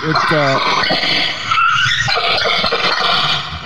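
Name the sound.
car tires skidding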